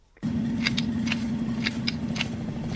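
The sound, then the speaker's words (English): Someone munching on something, with soft crunchy bites coming in an irregular rhythm over a steady low droning hum. No one speaks. “Sounds like someone's chewing on something, having a bit of a munch.”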